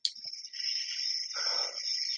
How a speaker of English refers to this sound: That sounds like frogs even.